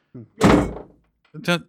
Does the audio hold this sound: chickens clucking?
no